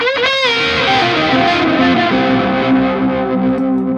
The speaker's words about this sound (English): I have this favorite switch. So normally I keep it on the fixed mode just for Echoplex, whatever the hell it is. And then the button here switches it to the multi-head mode, so kind of like a space echo. Look at that.